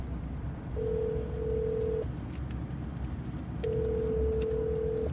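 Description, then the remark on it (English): A phone call to a home phone ringing out: two long, steady electronic ring tones separated by a pause, heard over a constant low rumbling background noise. No one speaks. “Call home.”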